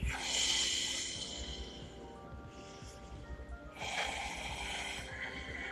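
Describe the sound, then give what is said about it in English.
Two long, deep breaths drawn in through the nose as part of a breathing exercise, loud, each a rushing, airy inhalation lasting a couple of seconds with a quieter pause between them. “Exhale, inhale through your nose. Deep, about 7 seconds.”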